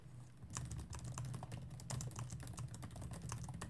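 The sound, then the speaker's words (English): Rapid computer keyboard typing while looking something up: a steady stream of crisp key clicks with irregular rhythm, heard alone over a low background hum. “Maybe I'll keep that in case you might typing ASMR.”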